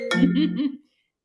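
A short burst of a phone ringing, a warbling, buzzy tone with bright overtones that lasts under a second before cutting off into silence.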